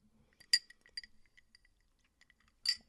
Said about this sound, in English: Yeah. So, and I'm sorry for the people out there that get annoyed if I like take a sip of water. Like, I've been talking nonstop for 57 minutes.